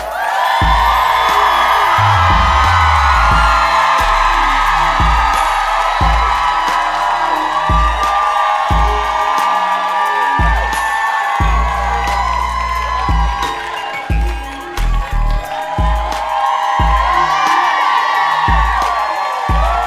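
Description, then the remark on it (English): A large live crowd at a Blacker History Month show cheers, whoops and claps loudly and without pause for about twenty seconds, welcoming the evening's hosts, while a steady thumping music beat pulses underneath the roar. “And now, let's give a round of applause for your hosts this evening,”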